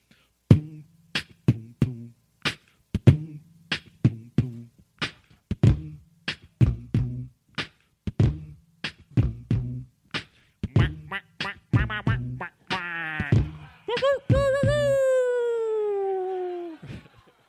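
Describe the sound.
A voice imitates a rap beat with steady, punchy mouth percussion and a low hum, then breaks into nasal duck-like quacks and ends on a long, falling rooster-style crow.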